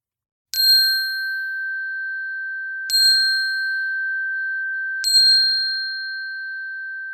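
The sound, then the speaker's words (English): A chime is rung three times to close a walk, spaced a couple of seconds apart, each clear metallic tone sustaining and slowly fading into the next. No voices are heard. “And to end this experience with three notes of the chime, we will close our time.”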